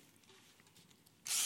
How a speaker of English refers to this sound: All right, power tools, I brought them today. It's a renovation tool for your home.